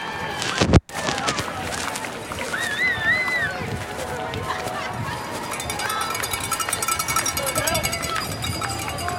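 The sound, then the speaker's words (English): Hundreds of marathon spectators at Cuddy Cirque scream and shout in a steady, overlapping roar of many voices, with a sharp thump near the start and rising whoops rippling through the noisy crowd. “They spotted me, and they were among hundreds and hundreds of people screaming and shouting. And I captured a little bit of that here too.”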